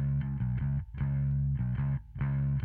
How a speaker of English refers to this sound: Gish has a lot of static bass lines that are like this.